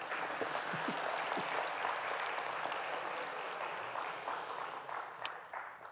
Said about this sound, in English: Yeah, you could clap for them if you wanted to.